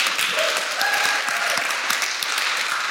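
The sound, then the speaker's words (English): An audience applauds the standing members of the church's PCC, steadily for about three seconds, a dense, even wash of many hands clapping at a sustained moderate level, with a faint voice briefly audible beneath it. “Could we give these chaps a round of applause?”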